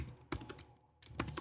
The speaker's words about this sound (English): Clickety clack here on the keyboard. I just want to get you this episode for Annie Londonderry here.